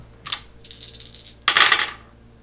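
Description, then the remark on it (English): Dice clatter across a hard tabletop as a player rolls them in a game, trying to yank back a hood: a sharp tap, a light rattling tumble, then a louder burst of clicking as they settle. No one speaks. “You can just roll, like, a straight dice thing to try and, like, just yank the hood back.”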